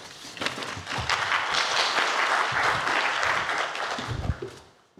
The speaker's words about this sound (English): All right, everybody, let's please give a round of applause for Ursula Beeman for her films.